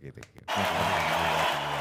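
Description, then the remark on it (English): A short bit of voice gives way to a sudden burst of loud, dense applause that holds steady, a continuous wash of clapping with faint vocal tones underneath. “I'm going to give you applause for that one.”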